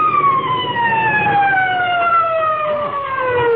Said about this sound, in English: Hey, you know what? I can still hear them sirens. Listen.